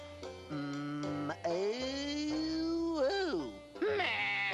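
A cow in a house, being taught to moo, strains out a bleat-like attempt at a moo: one long, wavering call lasting several seconds, its pitch sliding up and dipping, loud with no talking.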